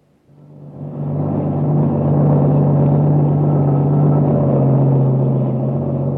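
A truck engine drones along a highway, the only vehicle on it for miles. The sound swells in over the first second and then holds a loud, steady, low rumble with a constant hum, with no voices.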